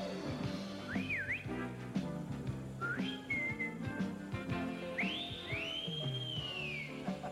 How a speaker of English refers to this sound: If I want him, I just whistle and my prince will appear.